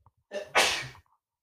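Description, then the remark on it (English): A single sneeze: a short wheezy intake of breath followed by a sharp, loud burst that fades quickly, with no talking around it. “I have to sneeze so bad.”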